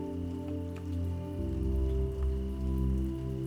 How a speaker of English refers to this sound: Close your eyes and come with me as the sounds of gentle raindrops trickle over you tonight.